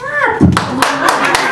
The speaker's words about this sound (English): But she did end her set by getting the audience to applaud, and she did it in a way I never would have thought to try. She simply told them to.